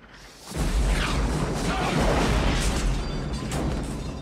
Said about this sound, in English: But sadly, that headcanon does not come true because there's what I assume is a bazooka explosion shortly thereafter.